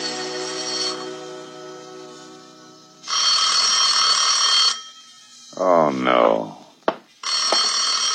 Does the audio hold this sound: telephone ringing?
yes